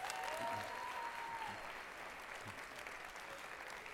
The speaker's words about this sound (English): Can we give Rick a round of applause?